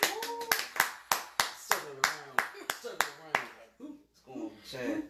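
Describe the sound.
A round of applause: about a dozen sharp, evenly spaced claps in a steady rhythm, with voices talking and calling out over them, then the clapping stops and only voices continue.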